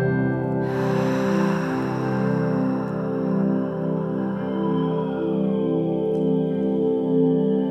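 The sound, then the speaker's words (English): A single deep breath in a guided breathing exercise, drawn in sharply and then released slowly in a long, fading exhale, clear over a soft, steady musical drone. “And one more cycle. Inhale. Taking your time, release.”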